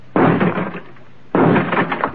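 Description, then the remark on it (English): Two loud, sharp gunshot blasts about a second apart, each striking a door lock to blast it open, with a heavy metallic crack and a brief rattling decay, with no voices. “Stand away from the door, Skipper. I'll have to blast the lockout.”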